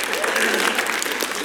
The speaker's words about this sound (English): Yeah, people clap.